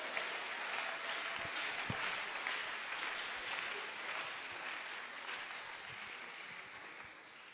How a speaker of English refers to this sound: Are you clapping your hands for the Lord?